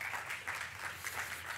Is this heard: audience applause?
yes